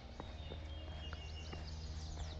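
Faint, scattered chirps and short whistles from birds in trees drift in over a steady low rumble, with occasional soft thuds like footsteps as someone walks on a path outdoors.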